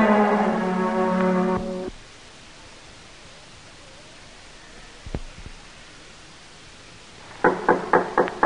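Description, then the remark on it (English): A quick run of about five firm knocks on the wooden door of a shoemaker's shop comes near the end, fairly loud, over a steady hiss of background noise after a brief musical tone fades. “Come in, come in. The door ain't locked. Come on in.”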